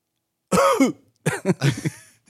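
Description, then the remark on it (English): A loud cough from a man lying in a bed with a heart rate of 12 beats a minute: one hoarse, throaty burst, a short pause, then a quick cluster of three or four rougher hacks. No talking around it. “And he coughs.”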